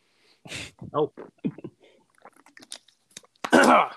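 Someone drinks water: a few wet gulps and swallowing sounds in quick succession, with soft mouth noises between, then a loud, breathy exhale of relief at the end.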